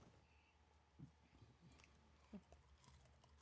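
Quiet chewing of an edible with soft, irregular crunchy bites and wet mouth clicks, a few sharper crunches standing out, with no talking.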